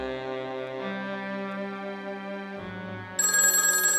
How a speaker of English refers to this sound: She's awakened by the telephone.